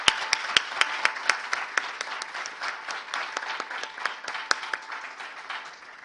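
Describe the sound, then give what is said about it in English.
A round of applause from a group at a Beth Adonai Drama Ministry program, for a performer who played: dense overlapping clapping with a few sharper individual claps standing out, steady for about six seconds before tapering slightly toward the end. “Please give her a round of applause again.”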